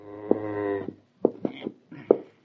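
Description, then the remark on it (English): A cow moos, a long drawn-out low call followed by two shorter, rougher lows in quick succession, with no one talking, as it is being urged through a door into a building it does not want to enter. “Come on, cow.”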